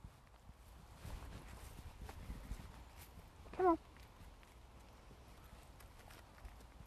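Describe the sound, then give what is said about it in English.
Heavy hoof thuds of a mare stomping her feet as she walks out on firm ground, steady, with one louder clump partway through and a voice briefly speaking. “Look at you stomping out. You really stomp your feet, don't you?”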